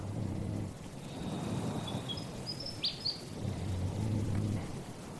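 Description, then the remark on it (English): A willy wagtail sings a few thin, high whistled phrases and a quick chirp at night, over a steady low rumble of wind in an otherwise quiet night. “That's a willy wagtail, not a night parrot. They're not a nocturnal bird, but sometimes they just seem to sing to the moon, which is pretty cool.”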